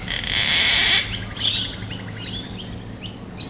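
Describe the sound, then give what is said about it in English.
A gang-gang cockatoo, recorded in Eltham, Victoria, gives a loud, drawn-out creaking screech lasting about a second, followed by a series of shorter, scratchy calls and chirps, with no one speaking. “But also the call of my favourite parrot, I think, the gangang. It sounds like the door in a haunted house.”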